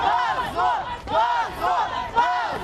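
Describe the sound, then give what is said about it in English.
A large crowd at an anti-government demonstration in Russia chants slogans such as "Putin is a thief" and "Russia without Putin" in unison, the shouted phrase repeating in a steady rhythm about every half second to second, loud and continuous with many overlapping voices rising and falling together. “They shouted, Putin is a thief, and Russia without Putin.”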